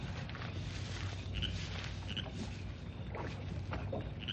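Oars dip and splash steadily as a boat is rowed across calm lake water, a soft rhythmic sloshing with occasional creaks of the boat, moderately loud, with no voices.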